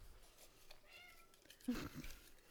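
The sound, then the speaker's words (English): A cat meows a few times, a drawn-out tonal cry followed by a sharper, louder call near the end, with faint background noise. “Nova just wants to be a part of come this. Here. Nova is come here, kitty.”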